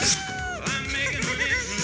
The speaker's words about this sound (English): Here, kitty. What is that? What are they? I'm sure that thing's a cat.